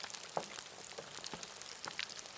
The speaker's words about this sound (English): And now, a soothing sound to calm your mind this mindfulness day. As you relax into it, fill your senses. Yes, enjoy the gentle sound of deep frying chicken.